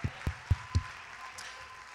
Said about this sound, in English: Come on, let's clap our hands and thank the Lord together.